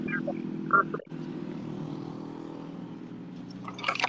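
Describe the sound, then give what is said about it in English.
A car going by, its low, steady engine rumble droning through the whole stretch, broken by a brief dip after the first second, with a faint higher hiss rising near the end. “I'll wait for that car to go by.”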